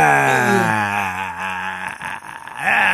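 A loud, drawn-out male yell by Van Damme after a kick, from a film soundtrack, a strained, sustained cry that wavers in pitch, breaks off briefly with ragged, breathy sounds, then swells back into a strong shout.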